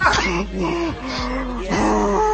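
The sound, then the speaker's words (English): A voice imitates the heavy, labored breathing of a video game character heard over surround sound: a few long, breathy groaning exhales with wavering pitch, fairly loud and continuous, with no other talking. “Why is he breathing so hard?”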